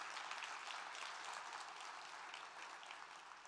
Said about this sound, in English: Now, if we're going to applaud the Lord, let's applaud the Lord. Let's do it right.